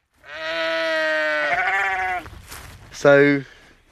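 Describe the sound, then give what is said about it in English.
An old sheep, too old for breeding, bleats loudly in a long, wavering cry lasting over a second, followed by a rougher trailing call and then a short, sharp second bleat. “And we get the sheep that are too old for breeding anymore, or meant to be, or for some reason the farmers decided that they're no longer fit”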